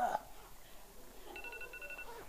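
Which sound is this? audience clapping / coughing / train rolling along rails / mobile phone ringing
mobile phone ringing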